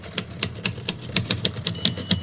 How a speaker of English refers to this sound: What are you doing? I'm writing, like you'll be, when you start punching those keys.